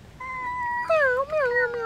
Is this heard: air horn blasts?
no